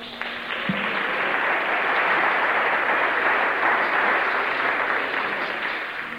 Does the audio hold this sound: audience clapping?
yes